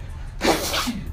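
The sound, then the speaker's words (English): A single sharp, loud sneeze bursts out after a brief quiet moment, then trails off into a short breathy tail. “Bless you.”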